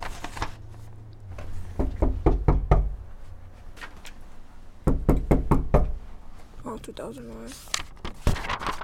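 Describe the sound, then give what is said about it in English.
Two rounds of sharp, firm knocks on a front door during door-to-door canvassing of voters for Obama, four or five raps each with a short pause between, followed by faint voices and a bit of shuffling. “Well, I do three, then I just get the door knocker ready.”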